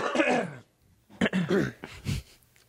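A person clears their throat with a rough, voiced rasp, then gives several short coughs in quick succession, each a sharp burst with brief pauses between.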